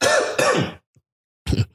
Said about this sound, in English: Don't die. Don't die. Just coughing too much.